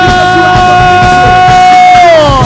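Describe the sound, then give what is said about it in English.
An audience roars in loud, continuous celebration, with one high voice holding a long scream above the crowd's shouting before it slides downward at the end. “So can victorious people shout because you have the victory? Can victorious people scream because you have the victory?”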